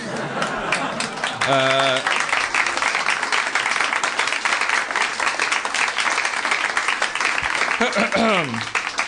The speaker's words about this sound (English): It's weird. The round of applause is weird. You didn't do anything wrong. I'm saying it sounds weird. It's all weird.